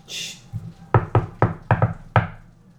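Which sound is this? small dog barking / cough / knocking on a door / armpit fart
knocking on a door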